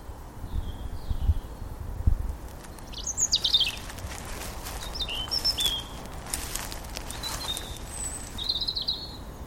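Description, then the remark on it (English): Several birds chirp and sing in short, scattered bursts against a steady outdoor background of wind and rustling, with a few brief low rumbles early on and no voices. “I also cannot promise that this interview won't be interrupted by an impromptu bird watch.”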